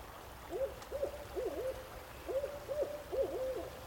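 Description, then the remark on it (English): A barred owl hoots at night beside a stream in two quick bursts of three rhythmic, wavering calls, clear over a low, steady background rumble. “Maybe a barred owl calls out.”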